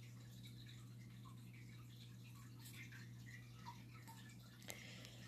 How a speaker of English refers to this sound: And I can still hear the water. Why the heck can I still hear the freaking water? Where is the source of water coming from? Where is this noise coming from? I really do not like this noise.